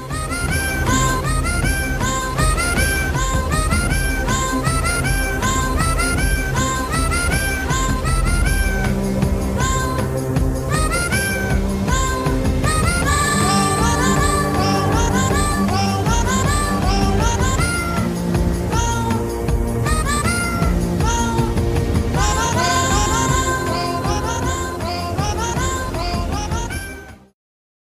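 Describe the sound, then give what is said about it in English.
A cat's meows pitched into a sweeping theme-song melody, rising and falling over a full, loud musical backing that plays continuously for nearly half a minute before cutting off abruptly. “we'll be taking you out for this episode with a wonderful cat singing the Game of Thrones theme song”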